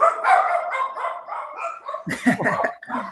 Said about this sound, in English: Dogs always want the attention on podcasts. My infamous dogs. They're famous.